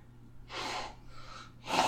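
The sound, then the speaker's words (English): A voice imitates heavy panting: three harsh, breathy gasps in a row, fairly loud, with a low steady hum underneath and no speech. “You pant.”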